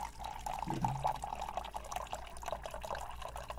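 Water pours steadily into a glass or cup in a break room for a drink, a continuous trickling, gurgling rush at moderate volume that holds for several seconds with no voices.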